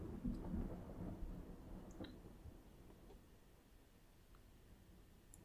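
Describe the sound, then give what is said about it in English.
A low, rolling rumble of thunder far off, strongest at the start and slowly fading into a soft, steady background with faint patter like light rain. “As you're talking, you begin to hear the sound of thunder in the distance.”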